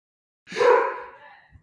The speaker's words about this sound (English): Sorry, my dog is barking, so I'm on mute. Hold on a second.